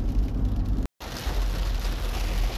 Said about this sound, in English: Oh, shit. Rain's picked up. Traffic's coming to a standstill. I'm on I-75 heading southwest. I'm at the area where Georgetown Road Northwest, which would be Tennessee 60, crosses.